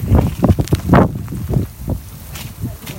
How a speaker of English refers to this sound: Yeah, we're about to leave the ninth station. It's raining and it's windy. It sounds terrible.